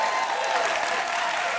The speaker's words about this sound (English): And once again, they're waiting in the wings, so give them a warm welcome so that they get to the stage with the applause still going and ringing in their ears.